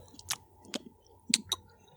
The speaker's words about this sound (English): I hate that. Everyone's going to hate that. That was me on my chewing tobacco. Yeah, we all get that and hate it.